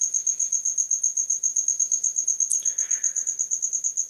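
A cricket chirps steadily in a fast, even pulsing trill that runs the whole time, with a brief faint rustle partway through and no voices.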